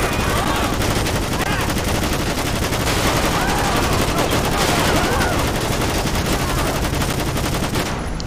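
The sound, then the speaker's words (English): Loud, dense video game gunfire crackles nonstop, rapid automatic bursts layered over a chaotic roar of battle noise, with possible faint voices buried underneath. “Shots fired, watch out.”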